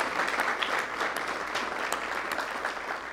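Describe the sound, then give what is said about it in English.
Steady applause from an audience in appreciation of past divisional leaders fills the space, a dense wash of many hands clapping at an even, sustained level with no voices standing out. “Would you stand and receive our words of appreciation and our applause?”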